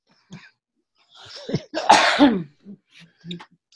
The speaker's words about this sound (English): But sorry for the cough.